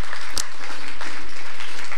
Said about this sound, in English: Can we just one last time, round of applause, all the parents this morning and families.